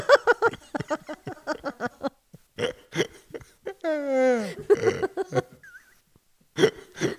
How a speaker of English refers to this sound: Was that a good belch? Yeah, it felt awesome. I feel better now.